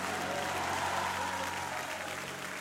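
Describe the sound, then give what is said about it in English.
A church audience claps their hands together in a steady, dense wash of applause that holds at a fairly even level, with faint crowd noise mixed in and no clear speech. “Now, would you clap your hands and somebody shout hallelujah.”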